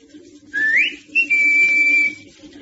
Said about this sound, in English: Well, I'll give him the whistle.